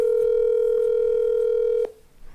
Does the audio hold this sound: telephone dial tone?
yes